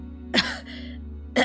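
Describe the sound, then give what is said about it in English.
Two wet, sickly coughs from behind the altar at the front of a church, one bursting out and trailing off into a raspy, phlegmy rattle, then a second sharp cough a moment later, fairly loud with no talking. “You hear a wet, sickly cough coming from behind the altar at the front of the church.”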